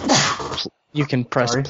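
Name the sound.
sneeze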